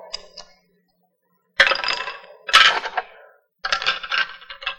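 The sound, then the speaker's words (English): Pencils and other small hard pocket items clatter and clink as they are set down on a scale in several loud bursts, with brief pauses between them and no talking. “More pencils?”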